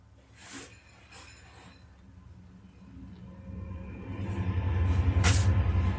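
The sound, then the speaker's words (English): A deep, heavy rumble builds steadily as a long train rolls by, with sharp hissing bursts of air and faint metallic clinks over the growing roar. “It's a long train.”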